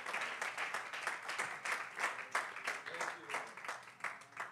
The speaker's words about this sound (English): Do you love the Lord today? Let's give him a hand clap of praise. What do you say? Glory be to God.